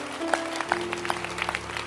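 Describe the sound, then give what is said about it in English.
An audience claps their hands after a preacher asks those who have Jesus to clap, a scattered patter of many sharp claps at an uneven rhythm, moderately loud, over a faint steady hum. “If you have Jesus, clap your hands.”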